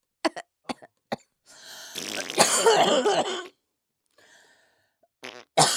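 A quick series of sharp coughs, followed by a longer raspy, breathy hacking stretch, a brief quiet pause, then a couple more coughs at the end.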